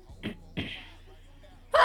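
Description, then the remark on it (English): A quick sharp intake of breath followed by a single breathy sneeze that trails off, with someone starting to speak right at the end. “Bless you.”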